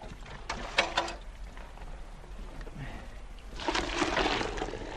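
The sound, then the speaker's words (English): Hot water pours into a saucepan in a steady, hissing splash that swells near the end, after a few brief clanks and sloshes at the start. The sound is moderately loud. “Hot water, though. Here's the saucepan.”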